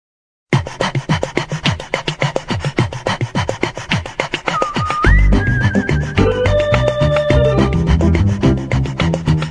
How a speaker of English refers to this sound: Because I can hear you panting. It was a heavy breathing.